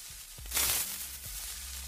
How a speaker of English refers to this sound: Now, the desert temple TNT is notable because TNT has a very specific connection to the Creeper. Obviously, TNT and the Creeper are both very explodey. They both make a similar hissing sound.